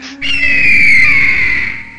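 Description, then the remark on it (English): A person imitates a griffin's squawking screech with one loud, shrill, drawn-out cry of nearly two seconds, its piercing pitch sagging slightly before it fades. No other sounds accompany it. “The griffin... turns its beady eyes towards the dwarf and stares at him through the keyhole.”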